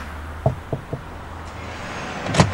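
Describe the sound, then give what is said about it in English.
Three quick, evenly spaced, firm knocks on the door of a house in a little terrace on a main road in Ireland, followed by a short pause and then a brief clattering sound against a low outdoor background hum. “I don't know who's living in this house, but we might knock and see if anybody knows of her or knows of the story.”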